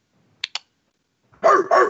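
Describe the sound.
A person imitates a dog, letting out two loud barks in quick succession, preceded by a couple of faint clicks.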